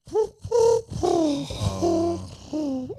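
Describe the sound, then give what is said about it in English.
Pigeons cooing, a run of soft, throaty warbling notes repeating in quick succession, fairly loud and clear with no voices over them. “when the pigeons are up.”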